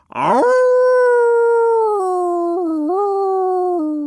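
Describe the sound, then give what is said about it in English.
A single long wolf howl, loud, swooping up at the start and then holding a steady mournful tone with a few small pitch dips before trailing off. No one speaks. “I'm a completely transformed wolf. I still howl.”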